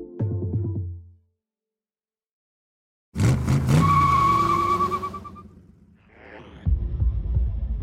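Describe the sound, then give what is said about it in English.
A short low rumble cuts off into silence, then a loud McLaren Formula One race car bursts in with a sharp, high tire squeal over a roaring engine that fades before another low rumble returns. “Imagine that you drive an insanely fast McLaren Formula One race car for a living, on the cusp of winning your third World Drivers' Championship.”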